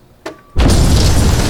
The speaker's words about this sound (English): The explosion shook the building.